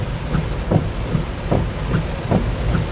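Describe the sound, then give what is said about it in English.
A steady, heavy rush of rain drumming on a car, heard from inside while driving, with a deep low rumble underneath and soft swells recurring at a regular pace. No one speaks. “Ugh, it's raining real hard.”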